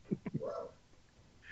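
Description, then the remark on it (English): The speaker's dog, in the room, lets out three quick, short barks in a row, trailing into a brief whiny yelp, then falls quiet. No one speaks over it. “Oh, nobody's going to shut that dog up either.”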